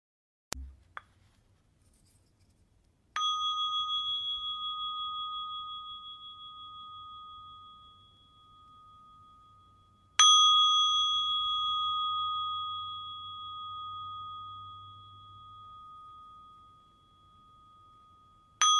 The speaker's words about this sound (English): We can hook our attention to the sound of the bell, following it until it fades to silence, and the other streams of sound in the wide ambient field rise around us.